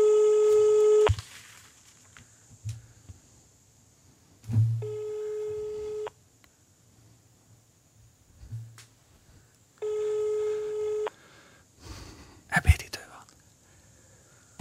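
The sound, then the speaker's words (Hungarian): Telephone dialing tones from a mobile phone: three steady electronic beeps, each about a second long, separated by longer pauses, with faint rustling and low background noise between them. “Tárcsázás. Csak hogy közvetítsem, mit csinál épp a telefonom.”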